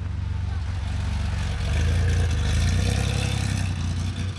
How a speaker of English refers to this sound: Oh, listen to this flat six. Here comes that Safari 911.